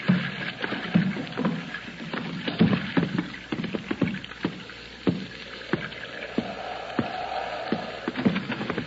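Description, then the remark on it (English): A rowboat moves through water, with oars dipping and splashing in an irregular rhythm, wooden knocks and water sloshing, steady and fairly loud with no voices. “There's the rowboat he came out in.”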